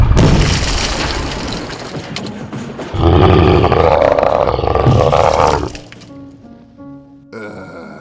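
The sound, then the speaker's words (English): A wall gives way in a long, loud crash of rumbling, roaring noise that surges again midway, then drops off into quieter rattling and settling debris. “Do you realize you've just burst through my wall?”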